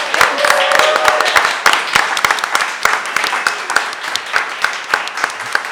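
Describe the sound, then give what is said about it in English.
A live radio show audience breaks into sustained applause for author Ling Ma, dense overlapping claps forming a steady crackling wash with sharper individual claps popping out, holding at a fairly loud level throughout. “Please give her a big hand.”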